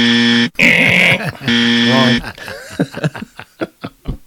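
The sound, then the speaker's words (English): Two loud, harsh buzzer blasts, each roughly half a second to a second long, apparently voiced in imitation of a game-show buzzer, followed by a burst of breathy, rhythmic laughter. “all you have to do is put like that buzzer sound over the Godzilla part”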